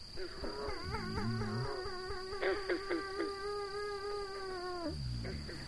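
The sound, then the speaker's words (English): A male cat lets out a long, drawn-out meow into a microphone, its pitch wavering up and down for several seconds before trailing off, with a softer low voice murmuring briefly at start and end. “Oh, my. He talking. You're the nicest kitty I ever saw.”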